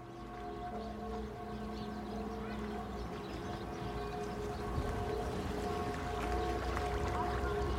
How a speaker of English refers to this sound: I think what you can hear there is the bells of midday in Kreuzberg.